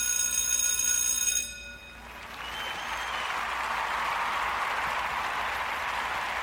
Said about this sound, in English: Time for the next class, don't you think? I think we might be hearing the bell soon.